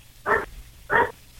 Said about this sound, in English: Whose dog is that? I know. Is that Sean's?